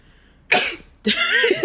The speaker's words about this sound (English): I had to sneeze.